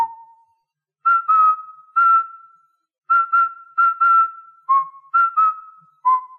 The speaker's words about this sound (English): He hums it in an effort to keep himself calm, and when a room is clear, he'll whistle the theme to himself in a confident manner.